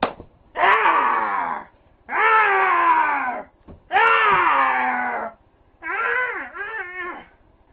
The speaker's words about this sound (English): … made a video the following day in which he screams inanely, jumps around